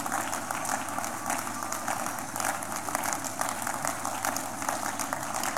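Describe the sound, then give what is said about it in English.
A church audience claps continuously, many hands blending into a dense, steady patter with no clear beat, holding at an even, moderate loudness throughout. “Church, keep clapping.”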